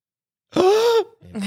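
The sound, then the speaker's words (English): A voice imitates a woman's gasp: a sudden breathy intake that turns into a drawn-out voiced 'ahh' for about half a second, fairly loud, followed by the start of another short vocal sound. “One big gasp.”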